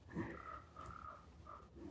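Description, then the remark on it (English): A small bird calls three times in short, slightly harsh notes spaced about half a second apart, fairly quiet against a low background hum, with no voices. “Sitting here with a little bird.”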